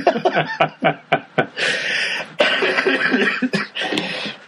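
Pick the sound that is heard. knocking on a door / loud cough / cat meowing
loud cough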